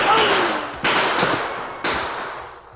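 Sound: gunshots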